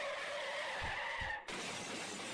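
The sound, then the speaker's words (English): Tires squeal in a long, loud skid with a couple of low thuds, then a sudden crash gives way to a spray of shattering, scattering debris noise. “Multiple car. There should have been a train wreck and a car wreck and a plane crashing into it from above.”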